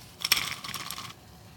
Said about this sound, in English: So before we get started, got my glass of ice.